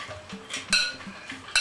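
Stirring wetted matzah, broken into large pieces, into an egg mixture so all the matzah is coated: a utensil scrapes and clinks against a bowl in quick, uneven strokes, with a few sharper clacks standing out. No one speaks.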